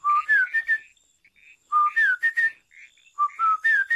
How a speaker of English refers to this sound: Don't you know that whistling at night, and especially near the baobab tree, can bring you bad luck?